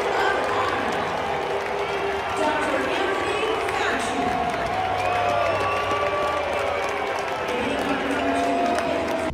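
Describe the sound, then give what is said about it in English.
A large crowd roars steadily throughout, a dense wash of booing voices mixed with scattered cheers and whoops, loud and continuous like a packed arena. “This sounds like everyone's booing.”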